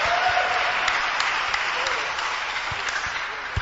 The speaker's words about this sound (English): Let's welcome my minstrel. Those who are clapping, receive a double portion.